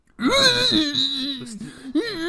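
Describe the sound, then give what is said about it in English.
A person screams in one long, loud, wailing cry that wavers in pitch, dips briefly, then swells again, with no speech. “Hey, do you guys hear someone who sounds like screaming constantly?”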